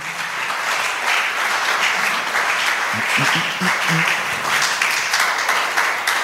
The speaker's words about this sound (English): The Christians are clapping.